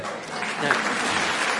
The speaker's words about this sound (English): It's just an applause for the fun runner.